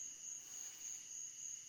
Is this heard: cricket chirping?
yes